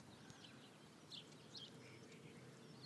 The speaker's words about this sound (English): Can you guys hear the birds?